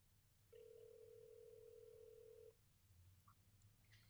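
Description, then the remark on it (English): A single steady telephone ringing tone from an outgoing phone call sounds for about two seconds, clear and moderately loud over a low background hum, then cuts off, leaving quiet line noise with a few faint clicks. “It's ringing in case you can't hear.”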